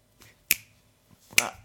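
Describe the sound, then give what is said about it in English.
Two crisp finger clicks about a second apart, each a sharp bright snap with a brief tail, with a faint softer tap before the first; no talking. “How many people clicking do you need to put together a bubumt?”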